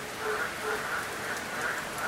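Steady rain patters down on the earth in northern Australia in a dense, even hiss, with frogs chirping softly in the background and no voices.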